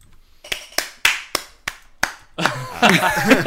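One person gives six sharp, slow, evenly spaced hand claps, a sarcastic little round of applause, before voices and laughter burst in over the last second.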